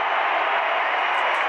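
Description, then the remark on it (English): An arena crowd on its feet roars in a steady, dense wall of cheering during a Jazz basketball playoff game, holding at a loud, unbroken level throughout, with no single voice standing out. “Crowds on their feet.”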